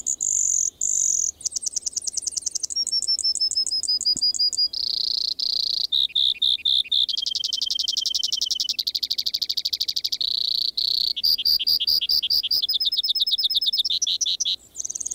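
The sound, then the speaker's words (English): A Brewer's sparrow sings in spring from the sagebrush of the Columbia Basin in Washington State, a long, unbroken string of high, rapid trills and buzzy phrases, each shifting in pitch and speed every second or so, clear with no talking. “Every spring, one of the most musical and complex bird songs on the continent rings forth from the sagebrush of the Columbia Basin in Washington State.”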